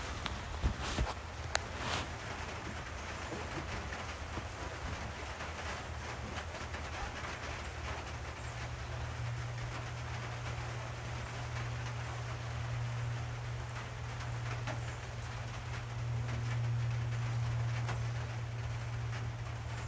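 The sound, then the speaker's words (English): Steady rain hisses across the tin roof of a house at 8:40 on September 28th, with a few sharp metallic taps early on and a low, constant hum underneath. No one speaks. “It's 8:40 on September 28th and it is raining. There are some little tin roof sounds from my house.”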